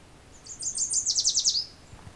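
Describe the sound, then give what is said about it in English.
A couple of fairly loud yellow warblers sing a bright, rapid song of high sweet notes that speeds into a quick run of repeated slurred syllables, clear against a quiet background, in a wet, humid, shaded spot. “Couple fairly loud yellow warblers here.”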